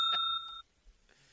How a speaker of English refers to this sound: And now all she can do is answer questions with her bell.